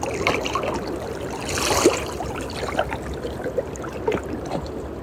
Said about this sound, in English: Just feel into the sounds of the water right now. And feel or imagine with every little wave coming in here. The lapping of the water.